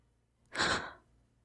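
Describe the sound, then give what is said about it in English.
A single sharp, breathy gasp for air as someone flings up in bed, fairly quiet, lasting about half a second against near silence, with no talking. “I fling up in bed, gasping for some air.”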